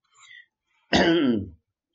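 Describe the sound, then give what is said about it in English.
A single rough throat clearing lasting about half a second, preceded by a faint breathy sound, with no talking. “Albeit that I'm clearing my throat constantly all the way through it.”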